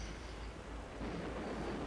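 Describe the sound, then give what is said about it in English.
A thunder rumble from a lightning strike in a film scene shot partly on location and partly on a soundstage: a steady, low, broad roar that swells slightly partway through, with no sharp crack and no voices. “That's lightning.”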